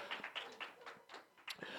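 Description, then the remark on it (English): Scattered clapping from an audience applauding themselves, a rapid, uneven patter of crisp hand claps that stays fairly steady for a couple of seconds without any voices over it. “So can you give yourselves a round of applause?”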